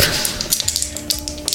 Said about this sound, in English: Clack, clack, clack, clack. Dice clack, clack.